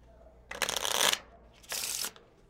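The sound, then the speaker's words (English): Two quick bursts of a deck of playing cards being shuffled, each a crisp, fluttering riffle lasting about half a second, with no talking. “All right, give them a shuffle.”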